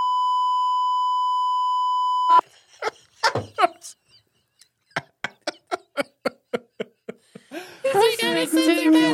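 A sensor button lets out a loud, steady, mid-pitched beep lasting a couple of seconds, then cuts off into a run of short, evenly spaced sharp bursts before people start talking.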